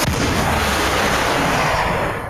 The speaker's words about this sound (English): Yep, rolled a 2, so the grenade goes clink, explodes, and just sending shards into both these things.